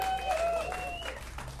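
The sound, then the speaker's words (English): An audience on the show Long Night applauds its guests steadily, dense overlapping claps filling the whole moment at an even, fairly loud level, with a thin sustained whistle-like tone riding over the clapping. “How about another round I'm of applause?”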